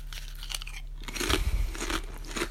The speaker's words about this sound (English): If you don't like the sound of people eating, this is the wrong podcast, but you're already about an hour in, so, you know.